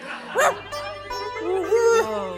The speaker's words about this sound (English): Did you hear that? Whoa. Hi, dog.